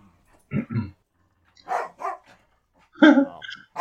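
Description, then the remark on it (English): A dog named Odie barks in short, sharp bursts, several barks coming in quick pairs with brief pauses between, rising to a louder, more agitated volley at the end. “Odie, be quiet.”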